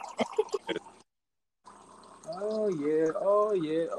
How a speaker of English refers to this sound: If you hear something going, it's my water machine. Just give me a second.